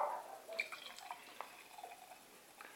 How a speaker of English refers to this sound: So this is a pastry stout, and no, nothing said about it. Right, so let's get this out into my glass and see what I think of it.